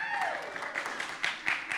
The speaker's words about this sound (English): And as soon as he said that, they erupted into applause. They couldn't wait.